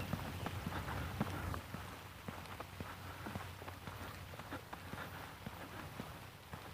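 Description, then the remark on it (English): Steady rain falling, a dense hiss broken by scattered sharp drop impacts pattering on a surface, with a faint low hum underneath and no one speaking. “Yep, and there it is. Here's the rain.”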